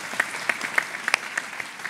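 A crowd claps steadily, with many hands producing a dense patter of sharp claps. The applause sounds moderately distant and continues evenly throughout, with no voices standing out.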